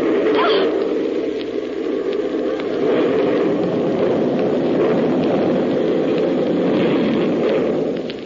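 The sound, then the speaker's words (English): A bomb explodes on an island, rolling on as a sustained, heavy roaring rumble, loud and steady for about eight seconds with a crackling, rain-like hiss on top and no voices. “I fused one of their bombs before I left the island. Everything on the island wiped out.”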